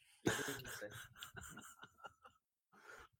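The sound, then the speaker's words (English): A male cat walking on pillows sniffs right up against the microphone: a cluster of close, breathy, rasping sniffs, a brief pause, then one more short sniff. No one speaks. “Could you hear him sniff the mic?”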